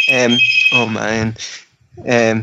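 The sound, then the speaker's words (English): A phone rings with a loud electronic ringtone, a bright, buzzy melody played in repeating bursts separated by short pauses. “See, I made fun of Dave a bunch before, but the one thing he always does is he is the one who always yells before we start the show, phone's on vibrate, everybody.”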